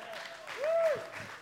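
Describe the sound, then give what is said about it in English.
An audience claps steadily for a professional auctioneer called up to the front, a dense wash of applause at moderate volume with a faint sustained tone rising briefly through the middle. “Give him a hand clap.”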